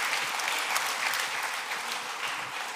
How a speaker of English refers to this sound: if you're grateful for the volunteers that make it happen week in and week out so we can have Discover Church, now would be an appropriate time to clap your hands. Let them know that you're thankful for them.